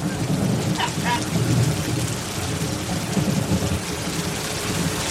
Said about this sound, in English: It's really raining. It's really coming down. I didn't think you guys had water.